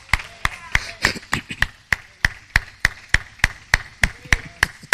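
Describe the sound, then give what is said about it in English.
Steady, rhythmic clapping in praise to bring down blessings, at roughly three sharp claps per second, loud and even in tempo, with faint voices murmuring underneath. “Why don't you stop clapping?”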